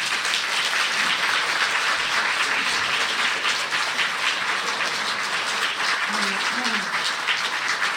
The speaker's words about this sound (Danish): Gi dem begge en varm applaus.